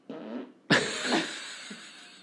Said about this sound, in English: I have another fart. Get your mic out.